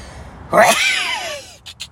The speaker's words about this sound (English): Big sneeze coming. Hold on. Excuse me.